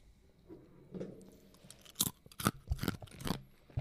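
Someone crunches on a pretzel, a series of sharp, irregular crunches and bites growing louder after a quiet start, with no talking over them.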